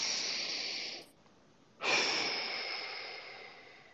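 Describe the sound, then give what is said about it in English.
Loud breathing in a relaxed 1-to-2 ratio: a steady inhale through the nose lasting about a second, a brief pause, then a longer, stronger exhale through the mouth that slowly fades out. No voices are heard. “So I'm inhaling through my nose, out my mouth.”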